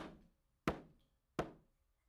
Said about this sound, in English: And he says to us in this passage, here I am, I stand at the door and I knock.